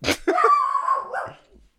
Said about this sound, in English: If you think about it, a bark is like a dog's way of saying sacré bleu. Yeah, my little dog was just saying... Sacre Bleu, who's out there?